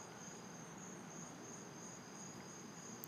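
insect, crickets chirping

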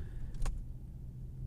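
vehicle, car interior

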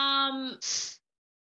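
human body sound, breathing into the microphone

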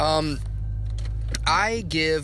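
vehicle, car being started up

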